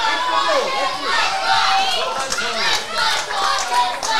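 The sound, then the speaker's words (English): A large crowd roars and cheers steadily at a match, many voices blending into a continuous, fairly loud wash of sound that swells and dips slightly throughout, cheering on the Tigers team. “Crowd getting behind the Tigers.”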